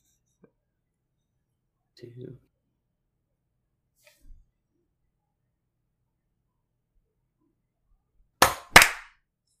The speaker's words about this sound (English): Can we do it again? can we do the clap again? Okay. I'm so sorry. All right, we'll do it at 15.